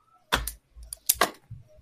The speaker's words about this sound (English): You're clicking your pen.